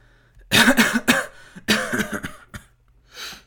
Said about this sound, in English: you have a cough there, are you fine?